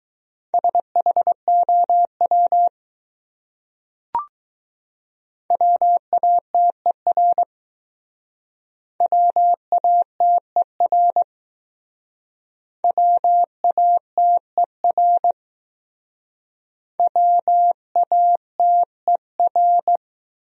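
Morse code beeps at about 15 words per minute, sending common English words from a top-200 list for speed practice: a steady mid-high tone keyed into short and long pulses, sent in five separate word bursts with silent gaps and one brief click early on.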